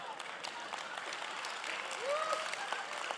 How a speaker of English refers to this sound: We can clap for hypocrisy in this church.